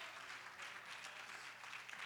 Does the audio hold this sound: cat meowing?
no